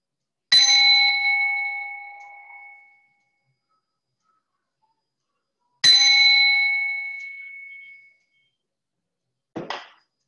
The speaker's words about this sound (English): Let's again start with inviting the mindful bell twice, and then we will do the smile practice.